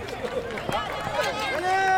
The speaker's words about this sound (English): Back wheel, back wheel. You could have heard that. Furiously swapping out. That is a drill you hear, taking the through axles out.